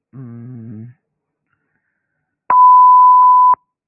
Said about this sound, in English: Okay, what's going on? Beeping? Are they having technical problems like I do?